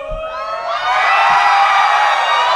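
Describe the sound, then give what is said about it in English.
A live audience erupts into loud, sustained yelling and cheering as a man is lifted up, swelling within the first second and holding at full volume, with high shrieks and whoops layered through the roar. “No, I was going to pick him up and see if you guys yelled louder.”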